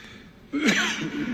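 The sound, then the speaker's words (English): A single short cough from Joe Biden bursts out abruptly while he delivers remarks at an East Jerusalem hospital, with a rough throaty edge that trails into a brief voiced rasp, against faint background noise. “And drinking some water after coughing.”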